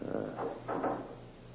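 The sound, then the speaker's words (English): A heavy fire door is pushed shut with a low, rumbling scrape that surges a few times before settling, fairly quiet, with no voices. “Just a moment, till I close the fire door.”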